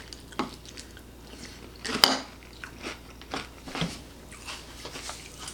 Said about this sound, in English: Yeah, that's good. Real crunchy. You get that corn flake taste.